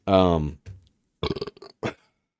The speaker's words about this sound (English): I've noticed that every episode you burp in the mic at least once. I burp like 7 or 8 times because I learned a long time ago.